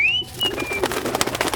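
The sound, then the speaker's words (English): Birds coo softly, with a thin whistling note at the start and a quick run of fluttering, flapping bursts after it. No one speaks. “And don't you worry your head about the birds. I'll take care of them.”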